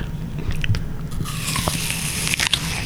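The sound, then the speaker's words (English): Biting and crunching into a crisp apple, with sharp crackly snaps and wet chewing noises over a low steady hum, no talking. “That's an apple.”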